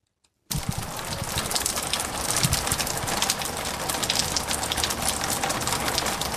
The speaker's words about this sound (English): It's such a great sound, the sound of rain out bush. But for locals in the remote outback community of La Jamanu, it wasn't just water coming from the sky. It was fish, live fish at that.